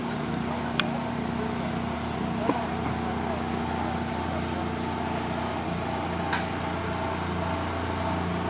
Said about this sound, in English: Coming down the road over here, it's a log truck. They're cutting logs back down in there.